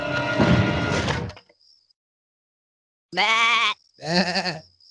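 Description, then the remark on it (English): A goat bleats three times, loud: one long wavering cry, a pause of silence, then two shorter quavering bleats in quick succession. “Oh, it's just a goat.”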